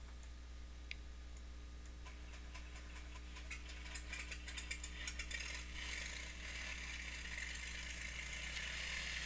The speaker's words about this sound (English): And with that, we got a good engine start.